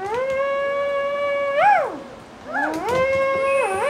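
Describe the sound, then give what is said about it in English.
A person imitates a shofar, making two long, buzzy, steady blasts with a brief gap between them. Each note bends sharply in pitch where it breaks off or starts, with no talking over it. “If my eyes were closed, I would think you are a shofar.”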